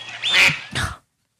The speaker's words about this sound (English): The duck.